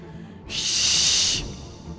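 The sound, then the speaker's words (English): A failed attempt at whistling: about a second of breathy, high airy hissing with no clear musical tone, rising abruptly out of quiet and cutting off just as suddenly. “I just tried to whistle.”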